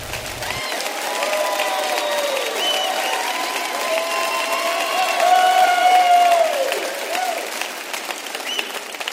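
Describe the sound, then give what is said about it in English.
A church audience at Red Rocks Church on Valentine's Day claps and cheers steadily for about nine seconds as a speaker walks out, the applause dense and loud throughout, with high whoops and shouts rising above the clapping. “At all of our locations, would you please clap like crazy when my mom walks out here to speak for her first time?”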